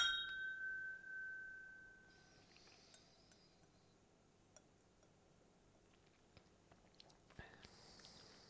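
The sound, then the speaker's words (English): Whisky glasses clink together once in a toast during a whisky tasting, leaving a clear ringing tone that fades over a couple of seconds, followed by quiet sipping of whisky and small mouth sounds. “Well, on that note, pardon the pun, cheers.”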